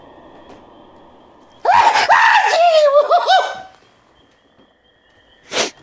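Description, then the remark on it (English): A loud, strange sneeze that stretches into a warbling, voiced wail lasting about two seconds, then quiet, with one short sharp burst of breath near the end. “That was an interesting sneeze.”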